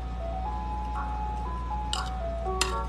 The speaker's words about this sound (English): Oh my goodness, you guys. This ice cream truck is out here. Just stopped right outside my house. Playing this loud, disgusting music. Oh. Turn that music off.